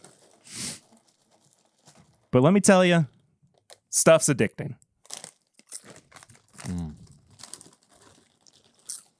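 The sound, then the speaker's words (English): A bag of Reese's Popcorn, popcorn drizzled in peanut butter and chocolate, crinkles and rustles in a few short, scratchy bursts as someone rummages inside, while a person talks briefly over it. “So we're starting with Reese's Popcorn, which is basically just popcorn drizzled in peanut butter and chocolate.”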